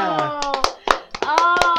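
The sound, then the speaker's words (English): A quick burst of hand clapping, a dozen or so sharp, uneven claps over about two seconds, mixed with excited voices whooping and cheering over the top, for Sunny Eclipse winning the most talented award. “Round of applause for.”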